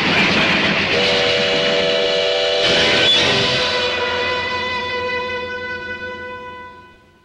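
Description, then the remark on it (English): A train whistle in the trailer for the film Terror Train screams loudly and steadily over rumbling rail noise. It holds its piercing harmonic tone for several seconds before gradually fading away. “The scream in the night isn't the train.”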